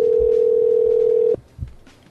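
A steady, loud telephone dial tone hums at one mid pitch for just over a second during a prank phone call to California, then cuts off abruptly, leaving a few faint low thumps and handset clicks.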